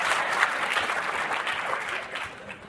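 A crowd applauds a volunteer coming up to play a little game, a dense wash of many hands clapping at an even, fairly loud level that eases slightly toward the end, with no voices standing out.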